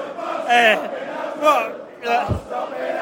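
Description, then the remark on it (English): A crowd of football fans chanting "We're a bus stop in Hounslow" together, loud massed voices rising in three sustained swells with a brief thump in the middle of the last one. “Absolutely, as you can hear. Apparently, we're a bus stop in Hounslow, they're saying.”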